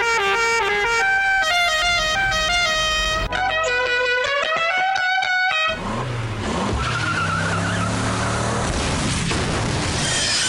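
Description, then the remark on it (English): A bus horn honks in loud, sustained blaring tones that shift in pitch, then gives way to a heavy engine rumble and hiss as the bus pulls up. No one speaks. “Hey, look down the street. Here comes the bus.”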